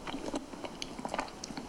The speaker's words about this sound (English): This one's crunch. Honeycomb, so it's really sticky.